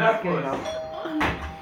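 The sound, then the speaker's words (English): A door is opened with a short clatter near the end, following a steady ringing tone, while people talk in the background. “you about to open the door?”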